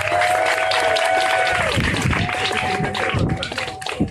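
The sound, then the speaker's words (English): A crowd applauds steadily at a morning gathering celebrating the life and accomplishments of Hazel Johnson, dense overlapping claps with a few voices calling out or cheering over the clapping before it starts to thin. “So give yourself a round of applause.”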